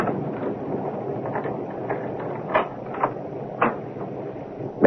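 Several sharp metallic clicks and clunks as a key turns in the lock of a locked front door and the door opens, over a steady rushing background noise, with a final louder knock.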